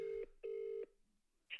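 Ringback tone of an outgoing phone call: two steady, buzzy electronic tones, a short one then a longer one, followed by a pause and a brief click of noise.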